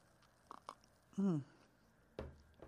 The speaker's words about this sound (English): Let me get a little sip of coffee in here again.